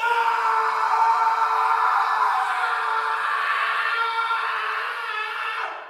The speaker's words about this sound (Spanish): Estimadas y estimados compañeros, este grito de júbilo se debe a que el cocinero se ha enterado de que tenemos como invitado al ilustre magistrado de Pieiria.